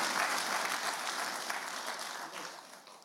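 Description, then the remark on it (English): An audience in Lusaka bursts into steady, dense applause after hearing that Lusaka will be the center of the main 60-year celebration, many hands clapping together at an even level for a few seconds before tapering off slightly at the end, with no voices heard. “And I expected you to clap.”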